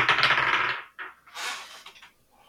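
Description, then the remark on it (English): A twenty-sided die (D20) clatters and tumbles across a hard tabletop in a busy rattling burst, followed by a couple of shorter skittering knocks as it settles. Fairly loud, with no voices. “I got a D20. Let's do D20. All right, you ready? Yep, hit it.”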